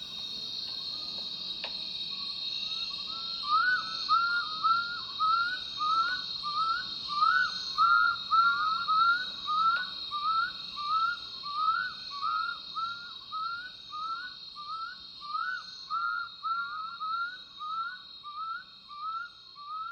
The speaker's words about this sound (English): And hear what may be the sound of the Itombwe owl.